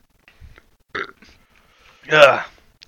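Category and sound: human body sound, burp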